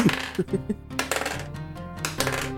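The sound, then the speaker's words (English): Dice clatter across a tabletop in a quick series of sharp, irregular clicks, with faint murmuring voices in the background. “I'll use a different one.”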